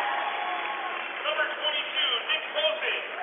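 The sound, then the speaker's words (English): Steady applause from a large crowd of New Albany fans as the Providence team is introduced in the gym at the Tiernan Center, Richmond High School, with voices murmuring and calling out underneath, swelling slightly in waves without any pause. “And good to see a lot of the New Albany fans clapping as well as Providence is being introduced.”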